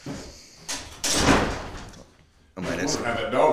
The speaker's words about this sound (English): That dog kept opening that door.